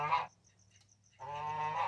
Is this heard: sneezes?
no